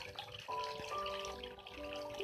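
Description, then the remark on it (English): A steady stream of flowing water runs throughout, a soft continuous trickle and wash, with sustained musical tones layered over it. No voices. “You hear the water stream keep flowing with you.”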